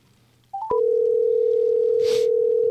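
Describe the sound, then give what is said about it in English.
A short rising electronic chirp, then a steady telephone dial tone hums continuously and loudly as a call is placed to a guest, with a brief soft rustle partway through and no one speaking. “All right, let's get this guy on the phone.”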